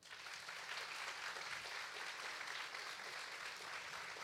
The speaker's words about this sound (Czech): Takže mi dovolte, abych vás požádal o úvodní potlesk pro architekta Ondřeje Douleho.